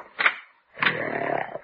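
A Great Dane snoring loudly under a bed: one short rasping snort, a brief pause, then a longer, rougher, buzzing snore that drones on steadily with no voices.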